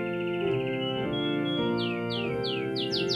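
A real canary named Singspiration chirps in a quickening run of bright, downward-sliding notes, about half a dozen in a row, over a steady music-box-style melody combining the Waits Carol and It Came Upon a Midnight Clear playing underneath.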